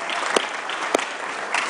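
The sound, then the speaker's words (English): A crowd claps steadily for young men who helped set up steps for the speaker, a dense, even wash of applause, with a few sharper, louder claps standing out briefly from the texture. “Now give them a round of applause.”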